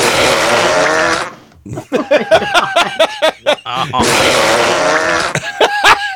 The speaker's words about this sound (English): Oh, I could probably do, here, let me, I got a burp here I can add as well.